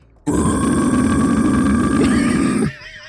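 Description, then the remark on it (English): A human voice imitates a monstrous, unholy growl: one loud, raspy, low rumble held steadily for about two and a half seconds before stopping abruptly, with no talking alongside it. “First, I need to hear this unholy growl”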